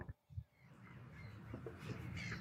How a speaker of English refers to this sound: Let the birds chirp. I thought that was a part of the song for a second.